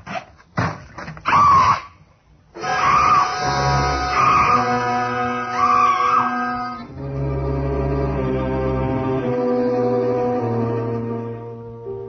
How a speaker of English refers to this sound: Screaming finally. I felt better for it.